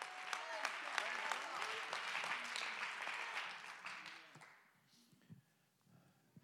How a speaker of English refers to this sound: Come on, somebody, clap your hand. Give God the praise.